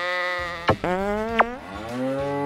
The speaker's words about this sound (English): But she did give me this nifty new electronic noisemaker. It's got a ton of sounds.